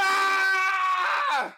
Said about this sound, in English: What is going on? What is this? So one of us has to scream every episode until it gets better.